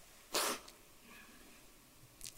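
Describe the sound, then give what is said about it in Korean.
A single loud, sharp sneeze from someone with an allergy bursts out early, followed by a quiet stretch and a short, fainter hiss or sniff near the end. No one speaks. “제가 알러지가 있어서 이렇게 막 콧물 찔찔 흘리고 기침하고”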